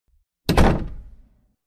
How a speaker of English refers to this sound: Don't slam that door